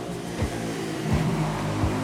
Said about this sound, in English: A lot of traffic on this street. Mariscal, it is Mariscal Secret, right? The street near Tres de Noviembre, near the Tomabamba River, which is the one of four natural rivers here in this fair city, Cuenca.